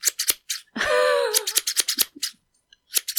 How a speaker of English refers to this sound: Now Opus is like, what's that sound? Hi, baby. It's all right. Just scissors.